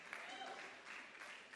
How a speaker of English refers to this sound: Thank you for those five scatter claps.